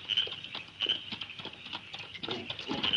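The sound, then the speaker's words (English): Hoofbeats clop in a steady, uneven rhythm, growing a little louder toward the end as a horse approaches at 11 o'clock on a dark, moonless night, over a constant high insect-like hiss in the night air. “Then, at 11 o'clock, they heard a horse approaching.”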